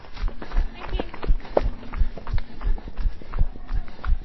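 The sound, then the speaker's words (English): Horses' hooves clip-clop on a path in a steady, repeated rhythm on a sunny day, with some background rustle and a faint voice mixed in. “Oh, here come some horses.”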